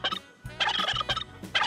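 A turkey gobbles in quick, warbling bursts, three rattling calls with short pauses between, loud and throaty with no talking over them.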